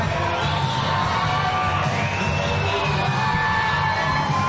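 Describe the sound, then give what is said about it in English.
A large crowd on its feet roars and cheers continuously at a mixed martial arts event at Combat Zone, a dense wash of voices with scattered whoops and shouts rising out of it, loud and sustained throughout. “Wow, this crowd is on their feet.”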